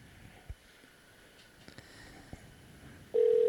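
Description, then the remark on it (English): A few soft, scattered keypad taps click over quiet background hiss as a phone number is typed on a keypad and the green call button is pressed, then a loud, steady ringing tone starts abruptly near the end as the call connects. “going to need you to do is on this keypad here, go ahead and type in your wife's phone number. And then hit the green phone.”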